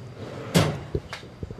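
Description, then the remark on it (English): A small drawer under a desk slides shut after a paraffin tissue block is put back inside: a quick scraping rush followed by a muffled knock and a few soft wooden taps as it settles. No one speaks. “So Dawn just kind of put that back in a little drawer under a desk.”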